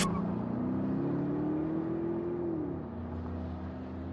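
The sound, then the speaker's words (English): A car engine roars as the car screeches out of a parking lot and out of Creekhaven, its pitch climbing steadily for a couple of seconds before dropping as the driver shifts, leaving a lower, steady hum. No voices. “We screeched out of the parking lot and out of Creekhaven.”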